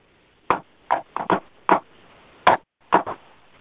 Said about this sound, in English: So I knock on the door. And when I knock on the door, I do a friendly knock like this.